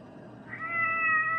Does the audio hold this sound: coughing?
no